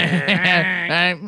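A harsh, nasal buzzer blares for just over a second, a loud low-pitched drone with a brief dip partway through before it swells again and cuts off.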